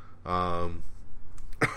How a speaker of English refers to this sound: excuse me. Oh, I need a cough.